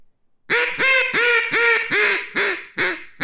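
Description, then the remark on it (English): A human voice imitates a hen duck's greeting call, made when she sees other ducks: a loud run of about seven nasal quacks, evenly spaced at first and then slowing and shortening toward the end. “And when she sees other ducks, she does a greeting call.”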